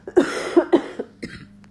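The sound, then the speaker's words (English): A quick fit of several harsh, dry coughs from a tickle in the throat, coming in rapid uneven bursts before trailing off into a softer rasp. No one speaks. “pardon me, I have to cough again. I have a tickle in my throat.”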